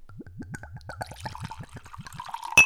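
Suntory whisky glugs steadily out of a bottle into a glass, a quick rhythmic series of gurgles that smooths into a pour and ends with a sharp clink.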